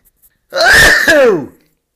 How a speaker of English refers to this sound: I'm going to sneeze. Hang on.